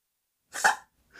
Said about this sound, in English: Did you have to come in here and have a hairball? Okay, kitty, come on. Just hurry up, please. All right, come on. She bugs me to get in, and then she'll do this. I hear like yeah, a coughing. She's got a hairball.